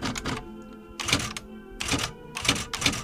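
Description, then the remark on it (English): Rapid clattering keystrokes of a typewriter as a man types his diary in two columns on 11 by 14 inch paper, in bursts with brief pauses and a sharp mechanical clack, fairly loud with no talking. “types his diary in two perfect columns down sheets of 11 by 14 inch paper,”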